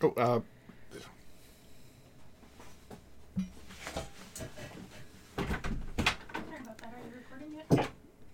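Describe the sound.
A door is opened with a few sharp clunks and rattling handling noises scattered across the moment, while voices murmur in the background.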